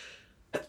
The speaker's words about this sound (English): But I'm gonna sneeze as I have this thought.